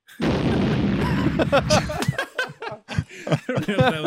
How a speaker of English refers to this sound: I don't know if that was right. Yeah, the explosion. Yeah, probably not the best.